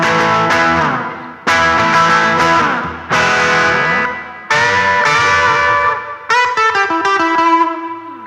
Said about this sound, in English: While we're here, turn on the reverb a little bit, turn the gain back down again. And you see, even when we turn the verb right the way up, it gives it kind of a washed out kind of sound, but